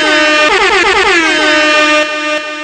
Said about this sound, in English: Who doesn't? Air horn.